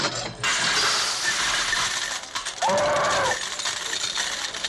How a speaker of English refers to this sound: My number three is the elephant playing the slot machine in Diamonds Are Forever.